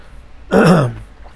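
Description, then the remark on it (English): A single loud throat clearing, a rough guttural rasp lasting about half a second, with quiet room tone before and after and no talking. “The cough drop's not helping, I guess.”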